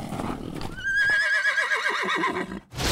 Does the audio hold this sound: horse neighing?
yes